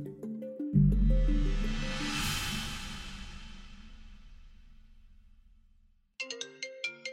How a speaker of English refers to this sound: It happens to us all. The other day, someone called my phone.